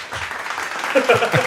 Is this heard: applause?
yes